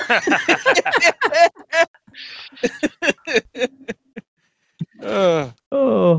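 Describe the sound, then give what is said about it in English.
Strained, snuffly breaths forced through the nose with a whistling sound, mixed with bursts of stifled laughing and groaning vocal sounds. The bursts are fairly loud, coming in uneven spurts with short pauses. “I can hear you trying to struggle breathing through your nose. I heard whistling Dixie.”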